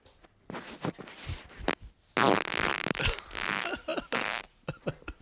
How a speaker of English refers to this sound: So we have a secret fan. Here are the farts from the secret fan. Mystery man. There were two. This is number one.